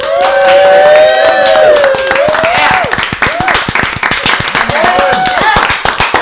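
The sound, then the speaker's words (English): A small troupe of performers claps for themselves in quick, uneven bursts, fairly loud, while a voice whoops and cheers over the applause with rising, stretched calls. “The troupe all clapped for themselves.”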